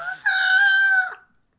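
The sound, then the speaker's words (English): A voice imitating a bird call: one loud, sustained, high-pitched squawk lasting about a second, steady in pitch and fading quickly at the end, with no other sounds around it. “Oh, we're doing bird sounds.”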